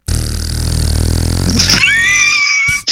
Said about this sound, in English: But yeah, a big giant wet fart. Jurassic World Fallen Kingdom.